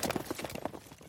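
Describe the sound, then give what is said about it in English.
Horse hooves clip-clop in a quick, steady rhythm, a run of close hollow knocks at a moderate level with no voices over them. “Two babies, one endorse horse. Endorse horse. Riding off into the sunset, now here's something we endorse.”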